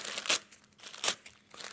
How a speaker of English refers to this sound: But he went like this with the paper, you know, all across the room, tore it up like this.